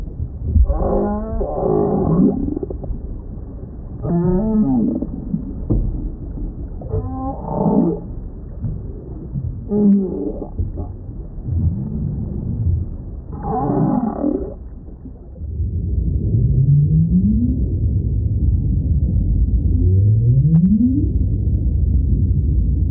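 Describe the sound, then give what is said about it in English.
Northern right whale vocalizations in Cape Cod Bay: a string of low, throaty moans and groans, then several short rising whoops over a steady underwater hiss. No one speaks. “We leave you this week with voices of the northern right whale in Cape Cod Bay.”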